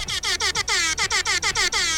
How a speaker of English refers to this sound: Now, if you don't like air horns, well, you are not alone, because neither does Alex.